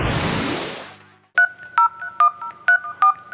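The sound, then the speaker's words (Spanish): A quick run of about seven clear telephone keypad dialing tones, beeping in an uneven rhythm right after a loud rising whoosh of noise. “Bueno, si está me coge el teléfono ahora.”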